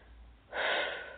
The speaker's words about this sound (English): And just a quick note, I sometimes do some deep breathing when we're moving some big stuff. So that's a good sign.